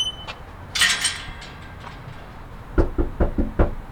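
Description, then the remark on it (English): A volunteer canvasser raps on a front door in a working-class neighborhood north of Sacramento, a quick series of about five firm knocks, preceded by a brief light metallic clatter and a quiet pause. “he's knocked on more than 1,100 doors during his volunteer shifts.”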